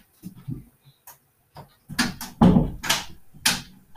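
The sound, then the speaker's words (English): A door is pushed shut, with a few soft taps and clicks leading into several louder thumps and latch clatters over a few seconds, no voices. “All right, so in this episode, I need to close the door.”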